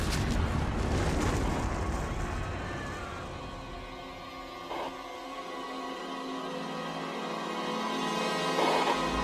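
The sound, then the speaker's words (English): A loud, deep explosive boom from a volcanic explosion erupts at the start and rolls into a long rumbling decay, with crackling debris-like noise and a swelling roar toward the end. No voices are heard. “We're just getting reports of a volcanic explosion.”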